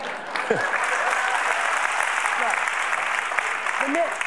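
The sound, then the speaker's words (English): A largely female audience breaks into steady, sustained applause, a dense wash of many hands clapping at an even loudness throughout, with a few faint voices briefly audible beneath it. “The men are saying, what are you clapping for?”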